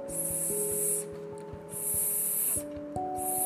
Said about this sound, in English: Who's that? It's a snake. A snipping snake.